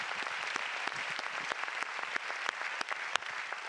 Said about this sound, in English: Give the Lord a hand clap of praise like you mean it. Amen.